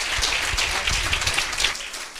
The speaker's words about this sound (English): Amen. Clap our hands.